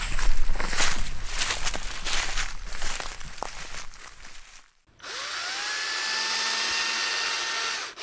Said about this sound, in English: I've just started now carving with the chainsaw